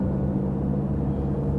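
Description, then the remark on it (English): A steady, low rumble fills the inside of a moving car on the 15th of May, with a constant engine drone and road noise at an even level throughout and no voices. “We are sitting in this car on the 15th of May.”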